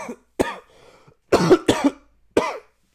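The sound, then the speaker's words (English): A loud coughing fit: a sharp cough, a brief raspy pause, then two quick harsh coughs in a row and one final cough, with no talking. “Hold on, I got a cough.”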